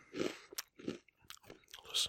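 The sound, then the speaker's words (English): Wet chewing of Cheetos with crisp crunches, several bites in an irregular rhythm right up against the microphone, with short pauses between mouthfuls and no talking. “If somebody doesn't want to listen because I'm chewing, go fuck yourself.”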